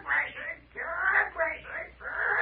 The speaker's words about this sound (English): What about that parrot we keep hearing? He's my pal, yes. My pal and my watchdog. Ain't anybody able to come within a mile of us without Belshazzar letting me know.